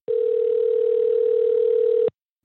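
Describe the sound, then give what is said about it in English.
A steady, loud telephone line tone, as a call connects with a guest joining by phone, holds a single pitch for about two seconds, then cuts off abruptly into silence, with no voices present. “Michael joins us today on the phone to talk about the food guide”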